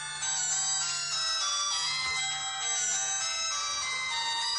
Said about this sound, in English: My daughter's phone is ringing.